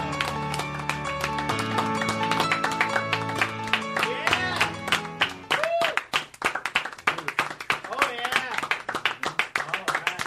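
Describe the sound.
A small group claps steadily and enthusiastically, with excited whoops and cheers mixed in; sustained musical tones sound briefly at first, and voices chatter over the lively applause.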